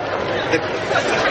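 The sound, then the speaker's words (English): A steady murmur of many overlapping voices from a crowd gathered outdoors on Thanksgiving Day to witness a turkey event, an indistinct chatter with no words standing out, holding at an even moderate level throughout. “The crowd is curious, but well-behaved.”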